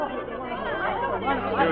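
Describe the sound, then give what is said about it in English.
A dense crowd of admirers chatters at once in the corridor outside a dressing room, many overlapping voices forming a steady murmur that swells slightly toward the end with no single speaker standing out. “The night we sang together for the first time, the corridor outside of a dressing room was jammed with admirers.”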